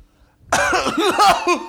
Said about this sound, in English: It was a cough. You okay? Yeah, I over exaggerated the severity of that cough. It was part drama.